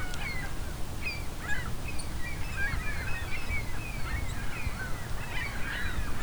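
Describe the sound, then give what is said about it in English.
Many gulls call over and over as they fly past, their overlapping squawks and cries coming above a low rumble of wind, with no voices present. “As you can hear, a lot of gulls going by here too.”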